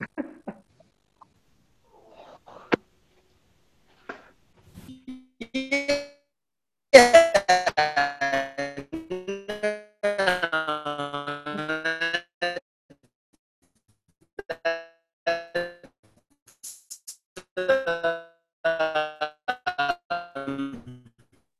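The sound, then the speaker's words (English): A garbled, heavily distorted voice warbles and slides in pitch, cutting in and out in choppy bursts between short silences, with no intelligible words coming through the bad connection. “I have no idea what you just said, …. It came out in whale speak.”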